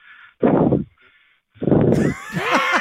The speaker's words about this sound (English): Is that the heavy breathing? What is he doing? Was he jogging? And then we picked up, and he didn't realize?